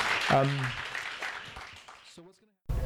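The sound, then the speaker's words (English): Audience applause at an author reading at Skylight Books, a dense wash of many hands clapping that gradually fades out, with a voice briefly rising over it before a speaker starts talking at the end. “Let's give her, you know, a round of applause.”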